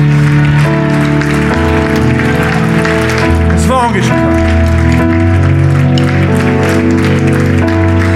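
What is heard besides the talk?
audience clapping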